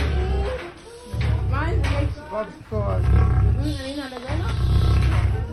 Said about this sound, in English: It's a lion. That lion. Quite distinctive animals, lions and tigers, really. That lion is toying with him at this point.